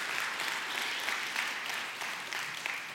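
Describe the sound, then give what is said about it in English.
Steady applause from a church audience for its members, a dense wash of many hands clapping at a fairly constant loudness for the full stretch, with no voices standing out. “So let's give everybody a round of applause for all that you do in our church.”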